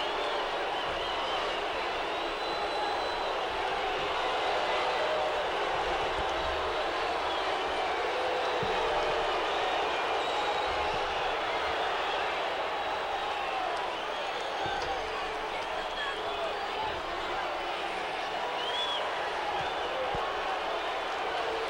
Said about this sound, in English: here you hear the roar of the crowd for superstar Billy Graham